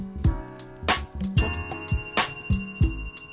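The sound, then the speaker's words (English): A bell rings repeatedly in quick, uneven strikes, each one loud with a bright metallic ring that lingers briefly. No voices are heard. “I'm gonna ring the bell for my sister.”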